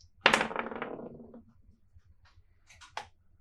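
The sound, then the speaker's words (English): Two twelve-sided dice clatter and tumble across a hard surface, a sharp rattling burst that fades over about a second, followed by a couple of light clicks as they settle. The dice are rolled to set the number of minutes for talking on a topic. “They roll 2d12s for a lot of time on the subject.”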